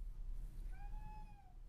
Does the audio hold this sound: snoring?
no